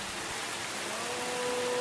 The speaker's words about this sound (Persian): لطفاً یک دقیقه به صدای باران در چهار راه ولی عصر ساعت 2:30 شب گوش کنید.